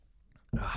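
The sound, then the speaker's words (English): A quiet moment, then an abrupt, loud, breathy slurp as someone takes a quick sip of a drink. “I need a quick sip.”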